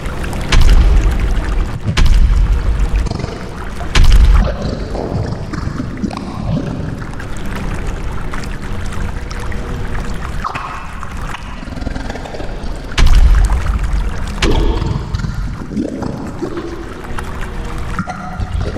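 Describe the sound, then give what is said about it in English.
Heavy water sloshes and churns as people wade into a pool of water nearly up to their chests, with deep thuds and surges as bodies move through it, a continuous wet, splashing wash filling the whole scene. “The water! Get in! Oh, it's nearly up to our chest.”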